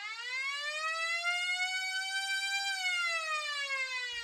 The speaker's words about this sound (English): And there's the buzzer to end the period, as well as our show.